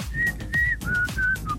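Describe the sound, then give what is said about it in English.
Someone whistles a short tune: a handful of clear, sustained notes that drift gradually lower in pitch, with a low background rumble underneath and no talking. “I'm trying to work out what I was whistling.”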